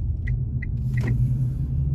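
A steady, low car engine rumble fills the interior of a moving vehicle, with three or four faint, brief high chirps over the drone. No one speaks.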